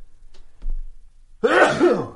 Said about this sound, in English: I'm going to sneeze. Hang on a second.